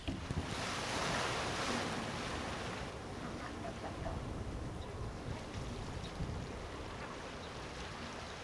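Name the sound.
ocean waves and surf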